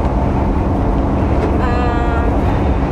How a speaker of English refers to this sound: Very, very windy. Going 64.